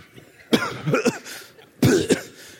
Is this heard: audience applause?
no